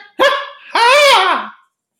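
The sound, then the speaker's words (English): A person imitates a dog barking: a short, sharp woof followed by a longer, drawn-out howling bark, both loud and voiced, then silence. “That's how dogs sound, right?”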